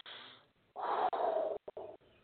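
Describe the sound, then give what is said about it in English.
A deep, audible breath drawn in and then pushed out, airy, with a loud rush of exhale in the middle and a softer trailing breath at the end. “Even a deep breath like that.”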